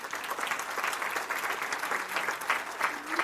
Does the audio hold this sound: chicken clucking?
no